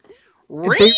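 A sudden, loud cat yowl bursts in after a near-silent moment, a harsh wavering screech like a cat-fight sound effect, intense, lasting about half a second.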